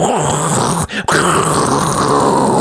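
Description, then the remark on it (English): Loud, steady roar of the engines of an aircraft, called the Concord Hee-Haw Study Bible, flying overhead in the sky over St. Paul's church, with a high, whining tone running through it. A brief dip cuts in just before the midpoint, then the engine noise continues unbroken. “I can tell from the annoying whine of its engines.”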